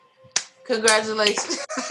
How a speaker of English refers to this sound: Slow clap.